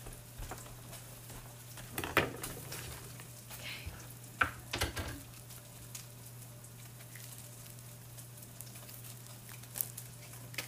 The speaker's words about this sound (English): Okay, Spam is still sizzling.